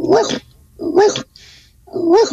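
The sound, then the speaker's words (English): A person imitates a big dog barking by breathing in very quickly while making a singing noise: three loud, gruff woofs in a steady rhythm, with a sharp breathy intake between the second and third. “And you're going to do it really quickly at the same time trying to make a barking sound.”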